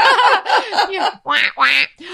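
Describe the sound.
A duck quacks loudly, about six nasal, harsh quacks in quick succession, with a short pause before the last few.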